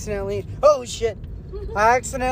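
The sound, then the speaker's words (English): People talk inside a moving car, with a steady low engine and road rumble running beneath their voices throughout. “I'm in the car with … right now.”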